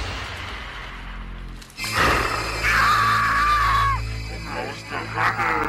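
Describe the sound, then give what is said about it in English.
In a horror film scene, after a quiet, rumbling stretch, a little kid's shrill scream bursts in loudly as a woman turns to show a demon face, holding for about two seconds, followed by a few shorter, wavering cries over a steady low drone. “And the kid screams.”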